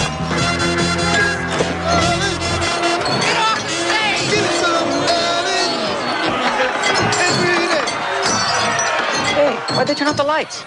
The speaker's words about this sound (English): You heard all the bottles smashing, right?